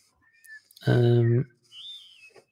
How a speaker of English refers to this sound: I'm not in the city anymore. Listen to the birds. I can hear birds tweeting.